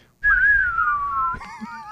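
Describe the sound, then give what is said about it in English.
Someone whistles a Western standoff melody, clear: one long note slowly sliding downward, then a wavering, warbling tone. A low rumble sits underneath, and no one speaks. “it'd be like a Dirty Harry scene where you just face off outside the saloon and that whistling music comes in”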